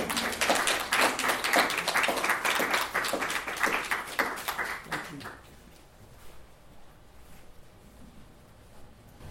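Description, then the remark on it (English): An audience at a poetry reading breaks into steady applause to welcome a poet, a loud, dense patter of many hands clapping for about five seconds before it quickly fades into quiet room noise. “Please welcome him with a large round of applause.”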